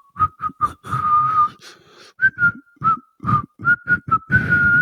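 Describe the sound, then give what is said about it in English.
A man whistles his own bouncy theme song while walking away, a string of short clipped notes in a steady rhythm with one longer held note, no talking over it. “He just whistles his own theme song as he's walking away.”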